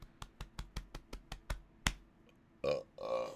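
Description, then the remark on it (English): A steady run of about ten quick, sharp clicks, then a loud, croaking belch that rumbles out in two drawn-out bursts at the end. “That was a holly jolly belch.”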